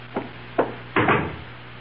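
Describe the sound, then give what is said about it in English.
A door opens and closes, heard as a couple of short wooden clicks followed by a fuller, longer thud, with no voices over a faint steady hum. “Someone's at my door.”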